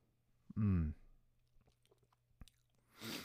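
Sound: sipping whiskey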